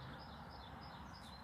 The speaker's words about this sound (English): I have birds singing to my left.